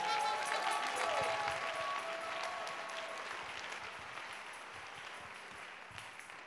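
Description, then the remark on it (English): A crowd breaks into dense, steady applause that holds for several seconds, with a few whistles or cheers early on before the clapping gradually softens. “If you are clapping, you are a Christian.”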